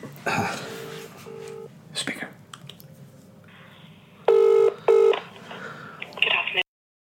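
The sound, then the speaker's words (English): A couple of short keypad beeps are followed by a loud double ring of a phone calling a London-based jewellery company, with faint rustling and murmuring in the background. “I'm just going to phone them and see what they say.”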